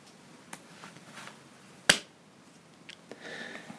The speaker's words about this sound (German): Alles klar, okay, also die Münze fliegt.